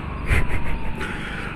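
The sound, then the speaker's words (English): An ambulance goes by in traffic while driving, its siren warbling in quick repeated pulses over a low rumble of traffic, strongest in the first second and then easing off. “We'll update you on that in a minute, after this ambulance passes.”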